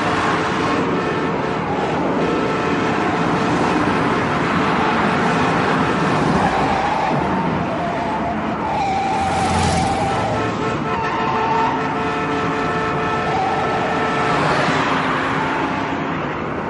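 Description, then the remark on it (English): Loud, continuous roar of old-timey round-bodied four-door sedans racing in a car chase on a dirt road, with revving, rattling and a brief horn toot, with no talking. “Old-timey cars that are having an incredible car chase on a dirt road.”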